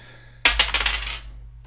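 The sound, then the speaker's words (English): A rolled die falls off a desk and clatters on a hard surface, starting with a sharp loud hit and then a quick run of rattling bounces that fade out within about a second, over a low steady hum. “Rolling this dice.”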